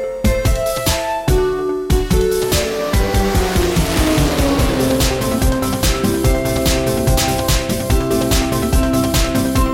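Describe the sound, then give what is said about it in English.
Whining engines of the kart-racing video game Garfield Kart, where players race cars as cats, rev and sweep in pitch, with squealing tires cutting through a busy, loud, steady game soundscape. No one speaks. “We race cars as cats and lap up lasagna while doing laps in Garfield Kart.”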